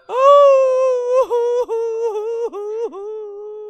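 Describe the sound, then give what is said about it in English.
Human voices, prompted during the telling of a Coyote tale, imitate coyote cries: one long, loud, steady howl that breaks into a series of short yips and dips before trailing on, with no talking. “Let me hear my coyote cries.”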